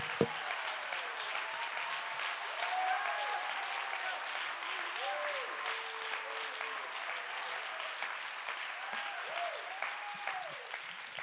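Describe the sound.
Steady applause from an audience clapping their hands to give God praise, a dense continuous patter of many claps with voices rising and falling underneath, sustained at an even level throughout.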